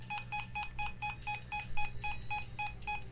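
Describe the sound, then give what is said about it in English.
An electronic detector beeps in a rapid, steady series of about a dozen short, shrill tones, fairly loud, over a low background hum with no one speaking. “So it's just beeping right now.”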